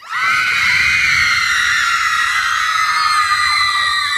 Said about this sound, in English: I got a screaming machine right here. Yeah? It replaces a teenage audience. We put it in the back of the auditorium, push the button, Panicsville. Here, listen.